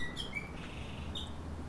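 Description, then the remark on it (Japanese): Sparrows in a garden chirp in short, high tweets scattered over a steady low background hum, a few quick calls near the start and another burst about a second later, fairly faint. “博士は早速スズメたちのおしゃべりを聞いてみました。”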